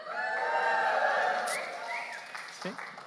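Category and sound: crowd, audience cheering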